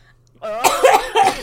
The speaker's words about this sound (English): I was just clearing my throat. What are you clearing your throat of?